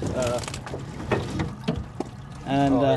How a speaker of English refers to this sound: Boris and his father each grabbed one end of the device, pulling a heavy wire cage onto our boat, packed with growing baby oysters